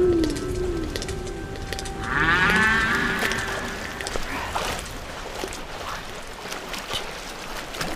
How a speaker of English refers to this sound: From orcas and sea lions, to the chatter of the sperm whale's coda, and the gorgeous calls of the humpback.